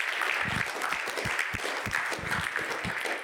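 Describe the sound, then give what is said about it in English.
An audience applauds news of kids making a decision for Christ at camp, a steady, dense wash of clapping that holds at an even level for a few seconds, with many hands overlapping and no voices standing out. “You can clap for that.”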